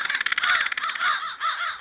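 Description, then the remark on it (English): Several crows caw harshly over one another at a night roost in trees, a dense, continuous chorus of rapid raspy calls stacking up, with no voices present. “The Crows’ Night Roost”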